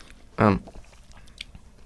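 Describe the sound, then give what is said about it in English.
Chewing on a crunchy, chunky Dairy Milk milk chocolate bar with pieces of peanut, roasted hazelnut and salted toffee: a short voiced murmur with the mouth full, followed by soft, irregular crunching and mouth sounds. “Okay, so munching down on that, it's got quite a crunchy texture to it because it's the nuts and the toffee.”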